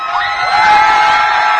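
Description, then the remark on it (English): A student section crowd cheers loudly from the sidelines at a Marple Newtown football game in the second half, a dense wall of shouting and whooping voices that holds steady and swells slightly over a short burst. “I got a Marple Newtown crowd led by the Jungle Student Section.”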